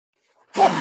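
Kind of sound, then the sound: human body sound, sneeze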